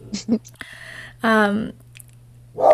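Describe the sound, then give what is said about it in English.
A dog makes a brief, whiny vocal noise in the middle of a few soft wet smacks and clicks, with a low steady hum running underneath. “There's my dog.”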